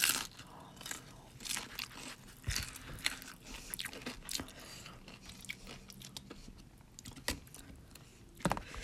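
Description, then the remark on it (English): Crunchy chewing of nachos, a steady run of sharp, crackling bites and munches repeating irregularly for several seconds, with a few louder crunches standing out near the end and no talking. “Those nachos are really good with the sauce.”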